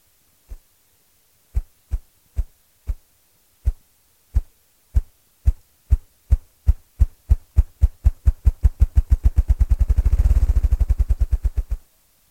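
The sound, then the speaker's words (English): In spring, a bird drums with its wings on a decayed, crumbling log: deep, hollow thumps begin slow and spaced, then speed up steadily into a rapid, blurred whirring roll before stopping. Loud, with no voices. “His drum is one of the most welcome and beautiful sounds of spring.”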